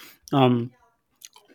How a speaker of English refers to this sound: Sorry, I'm trying to chew on some caramelized cashew nuts.